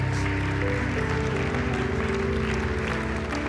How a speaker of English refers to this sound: Would you give him a hand clap of praise right now?